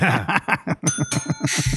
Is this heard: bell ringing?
yes